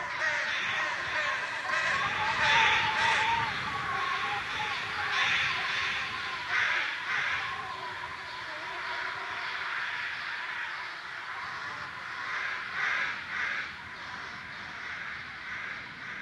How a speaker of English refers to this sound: A murder of crows directly above.